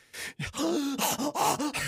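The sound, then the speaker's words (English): A voice imitates the heavy, labored breathing of a big-bodied creature with a tiny fox head, with a series of raspy, strained gasps and groaning breaths in quick succession, fairly loud. “Breathing for his unlife.”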